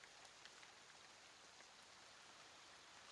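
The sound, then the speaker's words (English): Steady rain pours down in a continuous soft hiss, with faint individual drops pattering through it. There are no voices, just the even wash of rainfall. “It seems that the rain has muddled the scent.”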